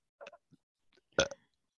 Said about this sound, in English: It's just burping and randomly saying, well, what was that?